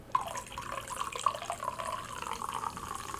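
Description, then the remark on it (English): A carbonated drink is poured with a steady liquid rush and a bright, crackling fizz, a few sharper splashes early on, moderately loud, with no talking. “You can hear the fizz.”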